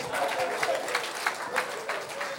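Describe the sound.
An audience claps and applauds in a dense, steady patter for a couple of seconds, with a few sharper bursts standing out and crowd voices mixed faintly underneath.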